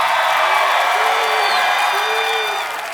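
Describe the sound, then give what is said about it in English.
A loud crowd at DV West Valley cheers and whoops continuously, with scattered shouts rising above a dense wall of noise that stays steady before easing slightly at the end. “Oh, we got the crowd ready.”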